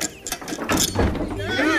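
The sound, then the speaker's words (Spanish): A window is opened with a series of short mechanical clunks and rattles, followed by a swelling murmur of many voices from a crowd of people gathered outside. “Espera, voy a abrir la ventana, que entre algo de luz.”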